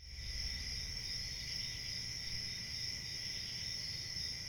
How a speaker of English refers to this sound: It's a warm summer night in Uncasville, Connecticut. The night is alive with the sounds of crickets and a gentle breeze blows through the dark New England forest.